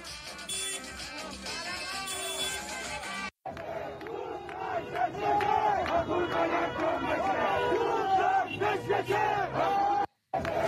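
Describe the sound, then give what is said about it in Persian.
A large crowd of people who have poured into the street celebrating the United States' win shouts and cheers together in a dense, continuous roar of many voices, with rising chants and whoops, briefly cutting out twice before resuming just as loud. “یه سری ویدیوهای شادی هم هستش، بچهای این پشت دارن ران میکنن همینجوری میره که مردمی که ریختن بیرون و دارن ابراز خوشحالی میکنن از برد آمریکا.”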